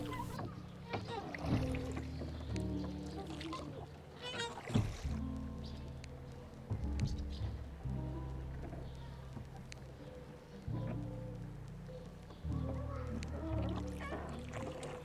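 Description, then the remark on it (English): A gondola rowed by a gondolier glides through water as it passes underneath a bridge, its oar stirring gentle, irregular splashes and pours, with indistinct voices murmuring throughout and occasional louder knocks. “The gondolier waves casually to you as he passes underneath the bridge.”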